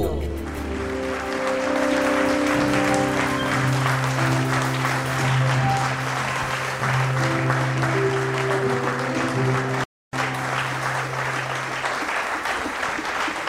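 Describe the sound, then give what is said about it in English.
A large crowd at Breakout Conference 2018 applauds loudly and steadily for over ten seconds in a standing ovation welcoming speaker Bishop Dick DeSando, dense clapping while a sustained tone or organ chord rings beneath, briefly cutting out near the end. “With a resounding round of applause and a standing ovation, shall we welcome our speaker, Bishop Dick DeSando.”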